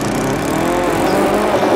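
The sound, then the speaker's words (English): A lawn mower engine in a movie runs steadily and loudly, a continuous buzzing drone with a slight rise in pitch near the end and no voices. “Peter Jackson maybe stole the lawnmower from this movie”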